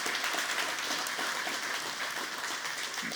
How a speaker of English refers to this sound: In the words of Paul, we thank God for your labor of love. How you guys have shown up for meals. Who's clapping? Yes, give them that. Thank you.